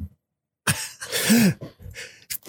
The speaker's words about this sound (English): I'm going to sneeze.